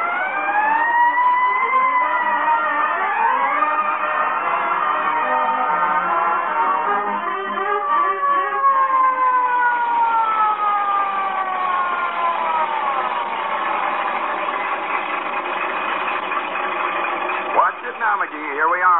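A fire truck siren wails continuously and loudly as the truck rolls past the Elks Club, its pitch sweeping slowly up and down in long glides.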